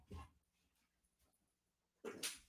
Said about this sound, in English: Oh, is that the other dog? Get out of here. That's great. Get out of here. He's about to bark. I can feel it.